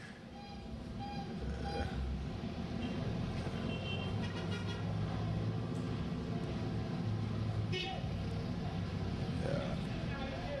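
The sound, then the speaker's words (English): Dense, steady street traffic in Ghana with a constant engine rumble, a couple of brief car horn toots cutting through, and indistinct voices chattering in the background. “People move freely on the streets. There is a lot of traffic.”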